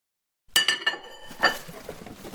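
Dishes clink and clatter as they are packed while a house is being packed up, with a few bright ringing knocks followed by steady rattling and shuffling of crockery. No voices are heard.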